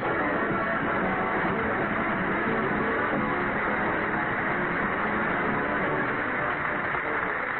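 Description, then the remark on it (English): A vacuum cleaner runs with a steady, unbroken whooshing roar, its broad motor hum holding the same level from start to finish with no voices over it. “Grab that vacuum cleaner. We can talk as we walk.”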